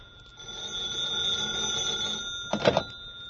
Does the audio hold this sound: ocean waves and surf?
no